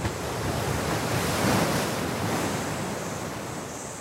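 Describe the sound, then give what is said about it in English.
Steady roar of waves breaking against rocks around the edge of a treeless, grassy island at sunset, a continuous wash of surf with a slight swell in the middle, mixed with gusty wind buffeting the microphone. No voices. “Can you hear the waves crashing on the rocks around the edge of the island?”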